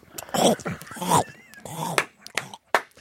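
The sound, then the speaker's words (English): A voice imitates the loud crunching of someone eating cereal from a cup in the office during prayer time, with a series of harsh, noisy mouth bursts mixed with growly voiced sounds, ending in a few sharp, separate crunches. “So he comes in, makes his cereal before he leaves in a cup, and he comes in and he eats it in the office while we're praying.”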